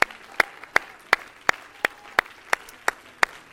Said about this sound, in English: Somebody clap your hands to Jesus today.